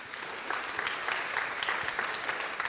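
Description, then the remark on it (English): A modest round of audience applause, steady clapping from a crowd at moderate volume with no voices over it, holding evenly for a few seconds. “I would like for you, if you guys would do me a huge favor and just give them a mild round of applause.”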